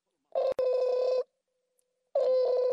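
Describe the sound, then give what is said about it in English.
A telephone number being dialed to call a son in Chicago: two long, steady electronic tones separated by a short pause, with a faint click in the first one. Clear, no voices. “Let me call him up.”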